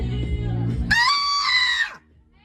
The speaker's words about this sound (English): Okay, well that doesn't mean you can just scream in our store.